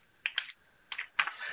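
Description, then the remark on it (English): Soft clicks come in small irregular bursts, two quick taps, a pause, then a few more, as someone types a question on a computer keyboard during a Facebook Live, with no voices. “I'm typing as I do this, right?”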